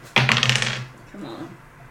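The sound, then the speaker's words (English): Dice, rolled for damage against a chain, clatter onto a hard surface: a sharp rattling burst of several quick clicks that fades within about half a second, followed by a faint murmur of a voice. “Yep, that hits, and then roll damage against the chain.”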